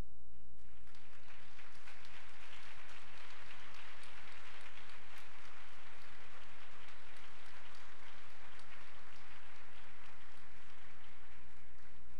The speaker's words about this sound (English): At this time, will the family members of our graduates and scholarship recipients please stand to receive applause as a token of appreciation from this year's graduates.